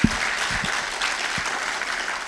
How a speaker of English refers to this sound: What we heard today was a testimony of the power of God overcoming the schemes of the enemy. Give God a great applause.